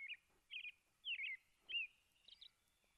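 A robin, a North American member of the thrush family, sings outdoors in the morning: a series of short, clear, warbling phrases, about five bursts spaced a half-second or so apart, against a quiet background.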